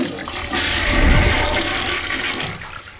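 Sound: toilet flushing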